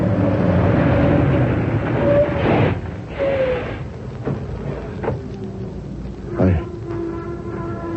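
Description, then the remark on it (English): A truck crashes into a car: a loud, heavy rumbling roar gives way to several sharp, crunching impacts spaced a second or two apart, then settles into lower, scattered clatter. “Hey, that guy driving the truck, he's acting crazy. Say you love me. Hey, he's going to hit the car,”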